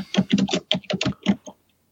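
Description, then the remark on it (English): A burst of loud, clattering typing on an old computer keyboard, a rapid run of about ten keystrokes over a second and a half, then silence. “Your keyboard is extremely loud”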